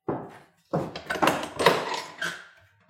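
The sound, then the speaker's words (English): A door behind the prisoner's box in the township of Willunga, leading to the prisoners' exercise yard, is opened with a wooden clatter and creak, followed by a few shuffling footsteps and knocks as someone walks through, with no talking. “I noticed there's a door behind the prisoner's box. Can I ask where that goes?”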